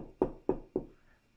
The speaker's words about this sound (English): So he's in the middle of just kind of putting this together when one day he gets a knock at the door.